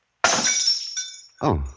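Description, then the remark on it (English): A drinking glass of water, knocked out of a person's hand, drops and shatters in a sudden, loud crash, its bright splintering ring fading over about a second before a voice starts speaking. “I must have knocked the glass out of your hand.”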